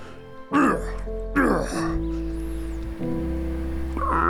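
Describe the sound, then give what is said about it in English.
A voice imitates a dragon coughing with something in its throat: two rough, throaty hacking bursts, loud, over a steady low droning background that continues after the coughs stop. “But something seems to be in its throat. It begins to cough.”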